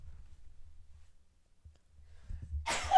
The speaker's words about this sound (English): I thought I was about to sneeze. Okay, no, I'm not. Wait, am I? I am.